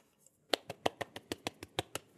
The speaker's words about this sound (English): I think that's the first time we've done an applause. Yeah, yeah, it's just me, but you know, it works.